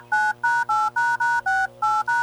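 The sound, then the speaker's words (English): A phone number being dialed to call a man: eight quick touch-tone beeps in a steady rhythm, each a clear two-note electronic tone with short gaps between, loud, with no voices. “Well, let's try to get him on the phone now.”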